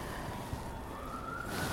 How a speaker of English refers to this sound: We can hear the sirens behind you, and it is sirens because officially now the hottest day on record.